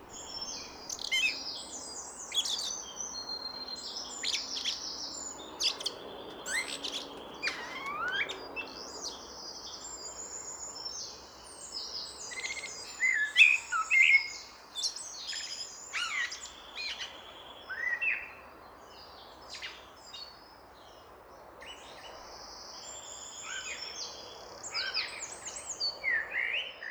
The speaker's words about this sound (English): It was quite electronic. That's blackbirdy or thrushy.